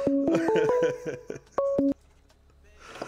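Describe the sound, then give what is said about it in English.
A string of electronic telephone tones signalling an incoming phone call: quick beeping pitches stepping up and down, then a brief two-note chime, fairly loud, followed by quiet background hiss. “We got a phone call coming in.”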